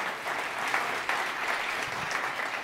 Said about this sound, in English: Let's give this band just another round of applause this morning.